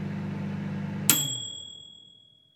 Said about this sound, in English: Now let's see where this magic microwave takes us next.